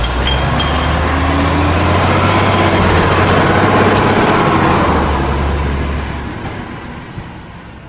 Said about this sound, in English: Hang on, though. I hear the sound of the water delivery man's truck approaching.